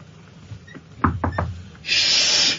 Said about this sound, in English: That sounds like some sort of industrial. They're dragging the chairs around. Could they not?